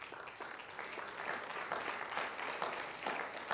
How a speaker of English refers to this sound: You ought to give yourself a hand clap.